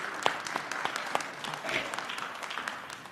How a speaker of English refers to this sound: Before you sit down, give yourselves a round of applause. Woo!